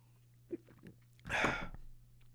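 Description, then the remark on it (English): A few faint clicks, then an airy slurp as someone sips hot coffee, lasting about half a second. No one speaks. “I'll take another sip of coffee.”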